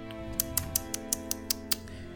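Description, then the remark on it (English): Crisp mechanical clicks from clock hands being turned counterclockwise, about eight in quick, even succession, over a steady low hum, with no voices. “So you comfortably go up to the clock and you begin to turn clockwise or counterclockwise? Counterclockwise. You hear the clicking.”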